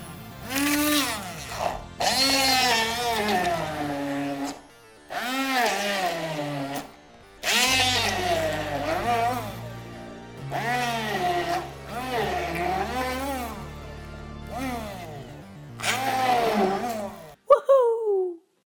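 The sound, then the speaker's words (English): An electric blender whirs in several loud, wavering bursts separated by short pauses, its pitch rising and falling, with a deeper steady motor drone underneath in the middle stretch. “The death chef was waiting with the blender running.”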